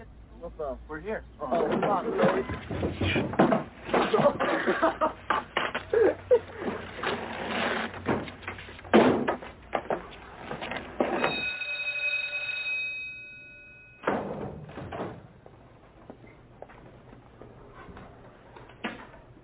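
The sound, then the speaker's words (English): A bell rings once, a bright, steady metallic tone lasting a couple of seconds. It comes after a stretch of busy, noisy commotion with people talking, and some chatter continues afterward. “Well, wait, did you hear the bell?”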